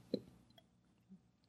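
A quick wet sip of an alcoholic drink from a bottle, one brief plopping slurp near the start followed by a faint swallow-like sound, quiet, with no talking.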